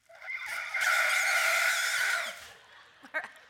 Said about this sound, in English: That's the elephant.